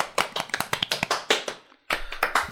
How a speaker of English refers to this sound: Oh, so, round of applause. Golf clap.